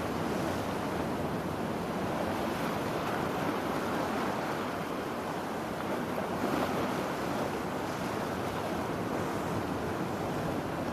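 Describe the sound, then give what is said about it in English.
A steady, continuous roar of ocean surf washing onto a shore, moderately loud and unbroken, with a breezy rush of wind mixed in and no voices. “Smell the ocean air.”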